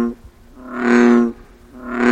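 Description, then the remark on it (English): A male frog gives a loud, drawn-out croaking call that swells for about half a second, then starts again, a buzzy, harmonically rich drone with a steady low pitch. “it's advantageous for them to have as loud a croak as possible”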